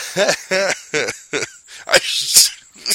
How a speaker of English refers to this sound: Oh, it's making me cough. Oh, that made me cough because I was laughing so hard.